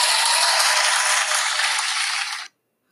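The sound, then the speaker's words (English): A round of applause for the poet Etheridge Knight from many hands, a dense, steady crackle of clapping that holds at an even loudness for about two and a half seconds, then cuts off abruptly. No one speaks. “Give him a round of applause, shall we?”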